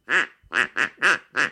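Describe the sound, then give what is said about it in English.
Five loud quacks from a duck call blown by a person at home, in quick succession, each a short nasal burst with a slight pause between, no talking. “I'm thankful for Eric for getting me this cool duck call, because whenever I'm bored sitting in my house, I'd like to just”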